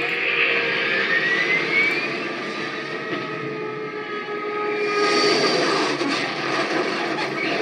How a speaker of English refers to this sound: Do not adjust your dial as the jet comes crashing down.